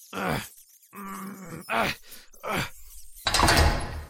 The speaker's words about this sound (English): They smell us. Here they come. Close the door." "Can't. It's stuck." "Here, let me.